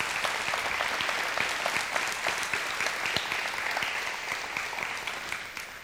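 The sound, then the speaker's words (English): An audience bursts into sustained applause for the announcement of plans to build the remaining portion of their master plan, dense overlapping claps forming a steady, bright wash of sound that holds at an even level for several seconds with no voices on top. “And yeah, you can applaud that.”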